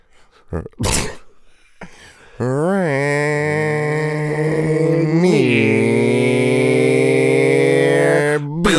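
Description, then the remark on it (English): A person vocally imitates a motorcycle engine, a loud, sustained buzzing drone that revs up in pitch, surges again midway, then holds steady before cutting off, preceded by a few sharp breaths. “Do the motorcycle.”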